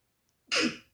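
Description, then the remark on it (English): A single sharp sneeze bursts out suddenly after a moment of quiet, a short, breathy explosion that fades quickly, with no talking around it. “Bless you.”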